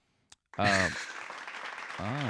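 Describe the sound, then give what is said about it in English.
After a faint click, a burst of live studio audience noise erupts: steady clapping and hiss-like cheering that holds to the end, with a couple of individual voices whooping above it. “You got a crowd. What's up, crowd? Live studio audience here.”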